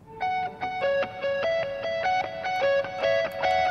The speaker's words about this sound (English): We also have this lead guitar that comes in. For this, we used a reverb pedal, a pretty bright sounding reverb that we added in.